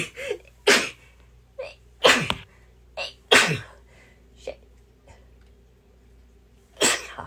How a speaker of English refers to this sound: Excuse me, I got a sneeze pending.